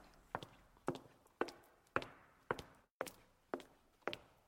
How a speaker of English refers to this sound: She could hear her footsteps as she went along, and had no reason just then to be alarmed.